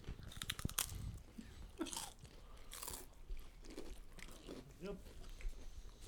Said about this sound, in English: Yep. Getting that ASMR crunching